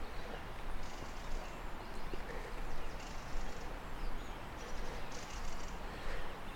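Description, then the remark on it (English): Faint, dry rattling flight calls of a mistle thrush, repeated in a few short bursts, heard in a valley over steady crunching footsteps and outdoor background noise. “It's the rattle of a sort of flight call of a missile thrush.”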